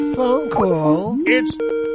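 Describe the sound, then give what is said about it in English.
An incoming phone call to the Ham Radio Show rings with a steady electronic tone, sounding under a man's voice that talks over it for the whole short stretch. “Alright, we got a phone call.”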